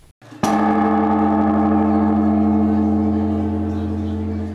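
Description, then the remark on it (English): A single deep strike of a Buddhist temple bell at midnight, part of the New Year tradition of striking the bell 108 times, followed by a long, rich, sustained hum with layered low and mid tones slowly fading over several seconds. “The tolling of bells at midnight is an ancient tradition for Buddhists”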